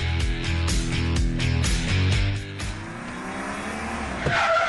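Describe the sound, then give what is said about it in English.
Car tires screech loudly for several seconds in a continuous, wavering squeal over engine noise, as if a vehicle is braking hard, followed by a brief final burst. No one speaks. “Whoever just hit those brakes hard for no reason was definitely not you.”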